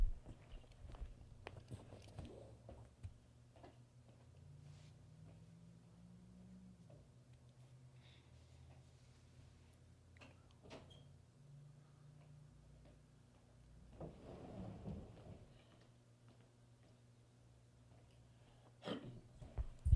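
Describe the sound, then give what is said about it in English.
Scattered footsteps tap along over a low steady hum as someone goes to shut a door, followed by a fuller thump of the door being pushed shut, then another sharp knock near the end. “I'm going to go shut a door and put this interview on pause.”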